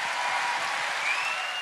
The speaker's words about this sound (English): give a big encouragement and round of applause to Simon as he comes to preach to us. Welcome, Simon.